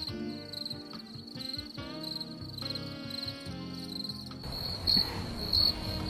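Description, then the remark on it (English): Crickets chirp in a steady, high-pitched trill that runs the whole time, growing louder in a couple of sharp bursts near the end, with low murmuring tones underneath. “That's where the crickets come in.”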